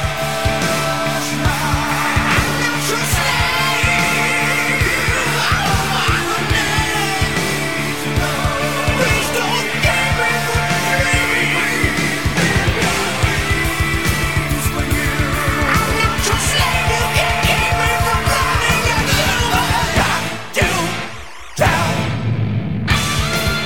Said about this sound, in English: With his goggles still on, he sings this song with a digitized vocal effect